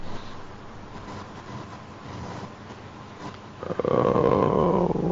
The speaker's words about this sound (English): After a good 10 minutes or so, you hear a little bit of a whimpering coming from the outside of the cave.